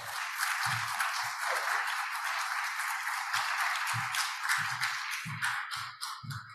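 An audience gives a round of liturgical applause to welcome a guest reverend at a morning worship service, a dense wash of many hands clapping at a constant level for several seconds with no talking, thinning slightly toward the end.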